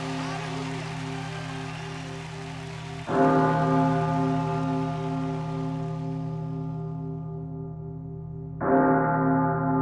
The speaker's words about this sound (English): As bells toll for the departed souls of September 11th, our mourning is a tragic reminder of the World Trade Center area's older status as Ground Zero for the sins of slavery and its legacy.